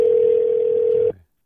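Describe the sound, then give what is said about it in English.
A telephone dial tone as a phone call is placed: one steady, loud, mid-pitched hum holding unchanged for about a second before cutting off abruptly, with no voices. “Let's call her now, everybody.”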